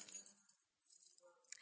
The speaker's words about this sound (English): So let's see, what else do we have in my bag? Keys.